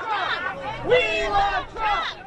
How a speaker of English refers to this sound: But Trump supporters chanted, "We love Trump," outside the election tabulation center downtown Phoenix.